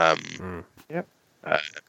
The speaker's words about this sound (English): As I burp into the mic